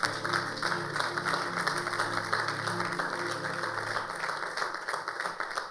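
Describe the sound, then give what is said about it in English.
A church audience claps steadily for several seconds for a man who ran the church, a dense, even patter of many hands with no single claps standing out, over a faint low tonal hum. “Please clap for him.”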